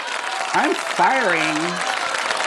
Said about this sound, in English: Where's the applause? Oh my gosh, my applause is so slow today. Okay, well, here it is.